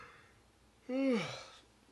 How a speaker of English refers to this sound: Edit that out. I hate when people yawn. It bothers me.